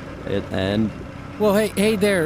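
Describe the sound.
A person vocally imitates an excavator engine being started with a key and running, with two bursts of rising, wavering, buzzy voiced rumbles and a low background hum.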